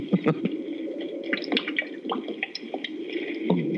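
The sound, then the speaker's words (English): Continuous wet sloshing and squelching, like water being splashed or swished, with many small irregular clicks and drips throughout at a steady moderate level. “This is all going on his chest right now, by the way, that water noise.”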